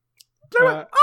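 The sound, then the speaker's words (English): A voice imitates a strained, screeching eagle cry in two quick bursts: a warbling, wavering squawk, a brief pause, then a higher, shrill rising screech, loud. “That's an eagle having an aneurysm.”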